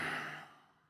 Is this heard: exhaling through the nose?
yes